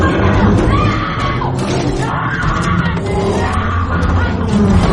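woman screaming

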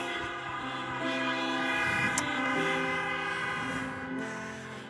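car horns honking

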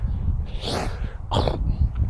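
throat clearing

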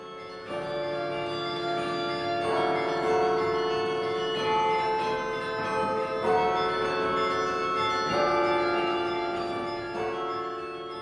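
carillon bells being played

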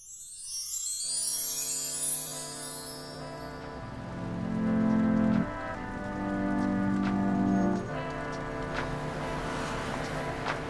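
rain falling

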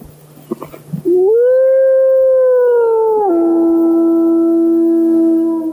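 wolf howling

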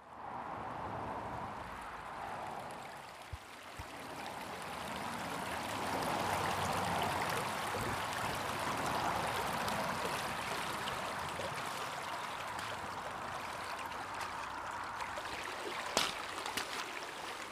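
flowing creek water

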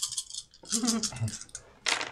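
many dice being rolled

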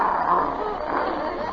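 dog barking

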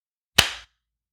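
hand clap

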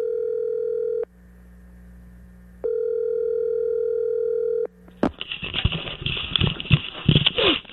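telephone call ringing

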